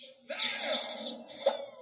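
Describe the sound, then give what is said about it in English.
A person lets out a loud, sustained scream lasting over a second, piercing, with a sharp jump in intensity near the end and no talking. “You're not gonna scream again, are you?”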